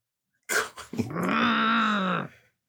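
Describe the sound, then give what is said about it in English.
A person voices a Skeksis-like creature growl: a short gruff burst, then a sustained, rasping, harmonic snarl lasting nearly two seconds, loud, with no other talk. “It's the growls.”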